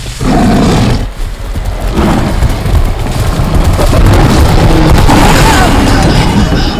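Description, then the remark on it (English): A massive rogue lion roars loudly amid a dense, rumbling wash of dramatic film sound effects, forceful, briefly dipping near the start before surging back and holding steady to the end. “A father and his two teenage daughters find themselves hunted by a massive rogue lion intent on proving that the savannah has but one apex predator.”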